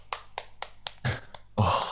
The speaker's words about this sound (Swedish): Jag måste faktiskt stanna upp och ge dig en liten applåd här.